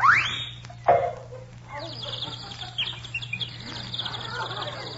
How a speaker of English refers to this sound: Do you hear that little bird singing